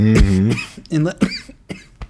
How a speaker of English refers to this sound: we're having a live coughing attack on the Grunge Bible podcast